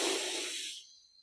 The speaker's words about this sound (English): You can do it through your nose like we just did, or you can use Kachari Kriya, breathing in with the mouth open, A-W, silently or whispery, and then out, K-E-E.